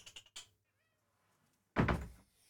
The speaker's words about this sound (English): The cat's outside the door. Come on then.